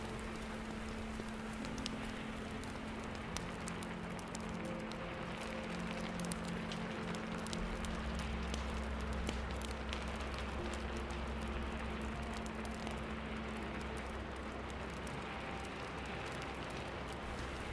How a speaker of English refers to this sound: On this particular day, it's raining. A very calm, cleansing rain.